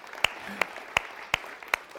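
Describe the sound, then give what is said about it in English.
Steady rhythmic clapping from the audience at a Sunday morning church service: five sharp, evenly spaced claps in two seconds, crisp and fairly loud, over a faint low background hum with no speech. “And the first person who started clapping was one of our best volunteers back there who gives many Sunday mornings to go serve.”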